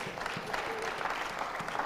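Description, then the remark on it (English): An audience applauds in a steady, dense patter of many hands clapping at once, moderately loud and continuous throughout with no voices rising above it. “At least you can clap.”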